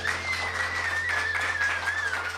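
A crowd applauds with dense, steady clapping at moderate volume for a couple of seconds. A thin, wavering high-pitched tone and a low electrical hum run underneath.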